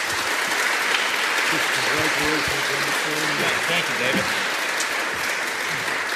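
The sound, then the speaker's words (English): Steady, dense applause from an audience for the panelists at a Braille literacy event, a broad wash of clapping at a fairly even level, with some faint voices murmuring underneath. “So let's give another round of applause to our great panelists today.”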